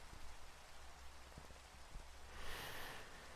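Soft, steady rain hisses throughout with a few scattered drop ticks, swelling slightly brighter and louder near the end. No voices.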